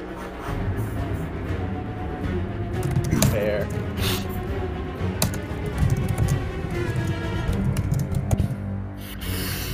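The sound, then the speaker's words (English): Rapid, furious typing on a keyboard picked up over an online call: a dense, irregular stream of sharp clacks and taps running steadily for the whole stretch, with a few louder key strikes standing out. “Love them, I can't hear her talking, but we can hear her typing so furiously.”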